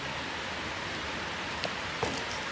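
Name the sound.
rain falling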